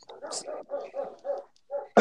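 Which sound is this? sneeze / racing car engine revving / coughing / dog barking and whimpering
dog barking and whimpering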